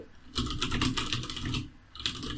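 Rapid, steady typing on a computer keyboard with blank keys, a dense run of key clicks that pauses briefly near the end before resuming, with no voices.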